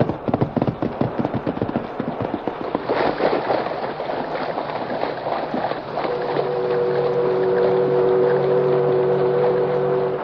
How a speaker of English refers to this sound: The river was deep and the current was strong. Water swirled and foamed about the white horse and the man in the saddle.